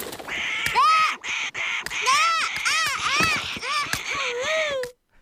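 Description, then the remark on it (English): Harsh, rapid crow caws overlap with the shrill, wailing screams of someone being pecked by a crow, loud, in a frantic stream of rising and falling cries that runs for about five seconds before cutting off. “that noise … makes of being horribly pecked by a crow”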